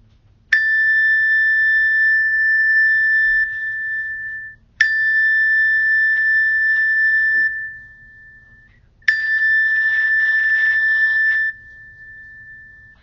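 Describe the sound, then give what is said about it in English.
Three strikes of a meditation bell marking the end of a meditation session, about four seconds apart, each a clear, bright tone that rings on steadily before fading. No voices, only a faint low hum underneath. “And at the sound of the bells, we will end our meditation for today.”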